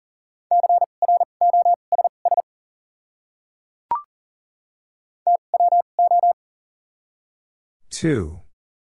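Morse code at 40 words per minute with double character spacing, spelling out a common word: quick on-off beeps of a steady mid-pitched tone in two bursts, separated by a brief click, ending with a short rough noise.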